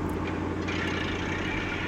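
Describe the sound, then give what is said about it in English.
A steady low engine rumble and road noise from a car driving across the Harlem River into the Bronx, continuous and fairly loud, with no talking over it. “Pull up here. I'll walk the half block. I don't want them to see the car.”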